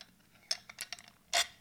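A few small clicks and taps from cup handling, then a short, airy slurp as someone takes a quick sip of a latte, with no talking.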